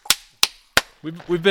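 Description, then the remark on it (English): Three loud, sharp hand claps at an even, steady pace, each crisp and snappy, followed by a person starting to speak. “You really are clapping.”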